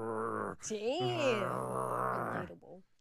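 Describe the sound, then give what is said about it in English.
A person imitates their dog's sleepy growl when she is touched while sleeping, making a drawn-out grumbling groan that bends up and down in pitch for a few seconds before trailing off. “but most of the time she doesn't like to be touched when she's sleeping. Aww. And she'll just go.”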